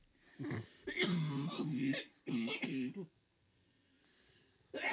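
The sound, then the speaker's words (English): Several loud sneezes in quick succession, each a harsh voiced expulsion, followed by a stretch of quiet and the start of another sound at the end. “Bless you. Bless you. Excuse me.”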